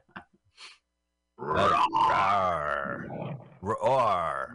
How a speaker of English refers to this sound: Roar.